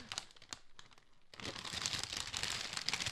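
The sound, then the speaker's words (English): Gift wrapping paper being torn open: a few short crinkles, then a loud, continuous stretch of ripping and crumpling paper that grows busier toward the end. “No, we did not get Bethel wrapping paper.”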